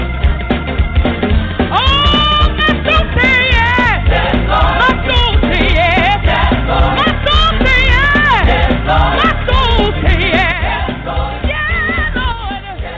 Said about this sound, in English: Let me see you clap your hands in this place.